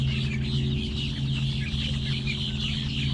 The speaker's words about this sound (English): To my joy, about 1,000 red-winged blackbirds and grackles flew in from multiple directions and hunkered down in the reeds. The sounds of their calls were loud, but the infrastructure that surrounded the wetlands was louder.